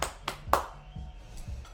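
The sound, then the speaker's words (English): A short applause sound effect: a few sharp, loud claps in quick succession, followed by softer, duller thumps as it fades, lasting under two seconds with no talking. “And the crowd goes wild.”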